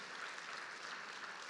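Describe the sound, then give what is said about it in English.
A crowd applauds steadily as people head out to get ready for baptism, a dense wash of clapping that holds an even loudness from start to finish with no voices breaking through. “Encourage them out with just an applause as they're going to get ready for baptism.”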